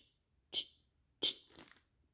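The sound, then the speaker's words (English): A voice imitates a big green grasshopper chewing a piece of grass with two sharp, crunchy mouth bursts, then a softer, scratchy nibbling sound trailing after the second, each burst quick and hissy. “Its eyes were all black and bulgy, and it was eating a piece of grass, and I could hear it chew like this.”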